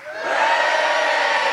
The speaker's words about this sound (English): But what would be lovely is to signal that we're all here. So can we get a big Minehead cheer from our audience here in the Marquee?